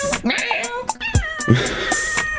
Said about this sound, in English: Oh my God, the cat. Look, is that the cat? Yes, definitely. It is angry. Yeah, you gotta go over there. She's not angry. Wait, what is happening? She's just like saying hi.